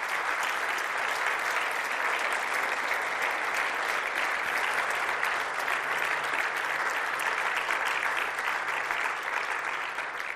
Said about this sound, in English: So let's just thank God for what he's done. It's okay, you can clap in the middle of a sermon. It's okay to clap. We're thanking God, we're not thanking individuals.